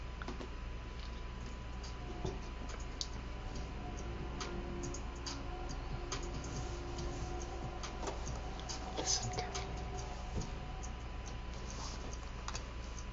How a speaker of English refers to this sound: So if all you're hearing is that tick, tick, tick, tick, that can be really annoying. So it's... Let's try it. Go ahead and play. Go to, like, second half of that so we get to the double time ticking.